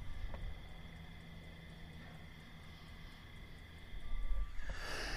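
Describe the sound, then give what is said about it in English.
A steady, continuous chorus of insects buzzing outside at night, heard from a truck's sleeper berth over a low rumbling hum, with a brief burst of louder noise near the end. “Listen to the bugs out there.”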